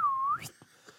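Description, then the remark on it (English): A person whistles one sustained tone that dips slightly, then slides upward and trails off into a breathy rush of air, imitating a pee whistle. Fairly loud, with no talking. “you know when they like they just take a huge shit and then this is all you hear is like. It's like. it's like a pee whistle, you know.”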